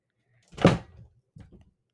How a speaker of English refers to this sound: I just dropped my phone. Yeah, I saw and heard that.